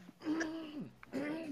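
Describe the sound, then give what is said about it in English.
Two throaty clearing sounds in quick succession, each a rough voiced rasp sliding downward, loud, with no other sounds around them. “Let me clear my throat.”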